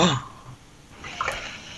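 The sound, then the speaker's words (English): A brief splash of water spilled on a person: a soft watery rush and splatter that builds near the end, following a short burst of voice at the start. “You spill water on yourself.”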